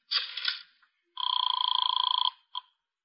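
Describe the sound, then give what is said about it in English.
A telephone is dialed with a short whirring burst, then a rapid trilling ring sounds for about a second, followed by a brief final chirp. It is clear, with no talking. “First thing I have to do is make a phone call.”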